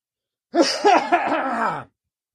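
A rough burst of throat clearing and hoarse coughing lasts just over a second, with gravelly, voiced rasps running together and no talking.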